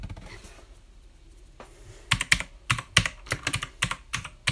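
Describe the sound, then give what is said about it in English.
Rapid clacking of keys on a new computer keyboard, fairly loud, an irregular burst of keystrokes starting about halfway through after a quiet stretch, with no talking. “Yes, I got a new keyboard.”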